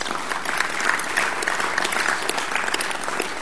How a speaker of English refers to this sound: Hey guys, as we wrap up tonight, let's give a round of applause for these guys.